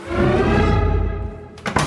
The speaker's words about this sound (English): When I say dairy farmer, we're going to run out and I'm going to slam the barn door and lock it, right?